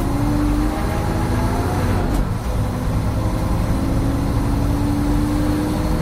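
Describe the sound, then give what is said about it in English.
A bus engine drones steadily from inside the vehicle during a ride on a rainy day, a low rumble with a faint rising whine, and a brief clatter partway through; no one speaks. “Time to get off the bus.”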